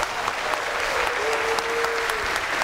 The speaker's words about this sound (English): would you please indicate so and welcome them by your warm round of applause.